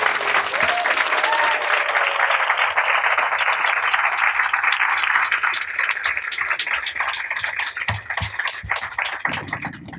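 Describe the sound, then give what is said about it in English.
Steady, dense audience applause for the writer Kiese Lehman fills the whole stretch, a broad crackling wash of many hands clapping at once, easing slightly in loudness toward the end as a few isolated claps stand out. “So please give a round of applause to Kiese Lehman.”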